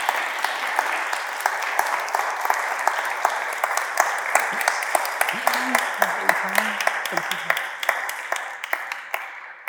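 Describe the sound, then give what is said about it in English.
A church audience applauds steadily to welcome two young people up to give testimonies, a dense wash of many hands clapping at even loudness for nearly ten seconds, with a few sharper individual claps and a brief voice murmuring underneath partway through. “Can we give them a little round of applause just to get them up here?”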